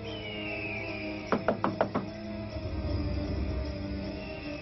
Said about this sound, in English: So Lewis dares Alex to knock on the door of the house, and the two boys run as a bright light shines out of the boarded windows and sucks Alex inside.